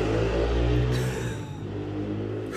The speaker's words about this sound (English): That's him just gone on his motorbike. He's just left now.